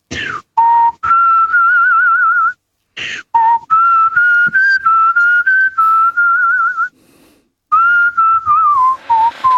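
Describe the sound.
A man whistles a song melody, a clear sustained tune with wavering vibrato across several phrases, broken by brief breaths and short pauses, with no talking.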